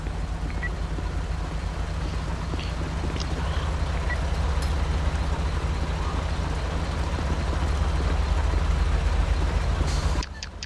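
A tow truck's heavy diesel engine rumbles steadily for several seconds, then a short air-brake hiss cuts in right at the end; the tow truck has just taken a vehicle.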